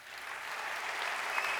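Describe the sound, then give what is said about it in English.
An audience who attended the biggest Christian prayer meeting in the world applauds themselves, a dense wash of many hands forming a continuous, fairly loud crackle that holds even throughout without pauses or speech. “Give yourselves a big clap.”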